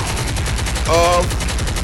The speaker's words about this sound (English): One full year. Hand claps. Hey, hand claps now. Yes, sir.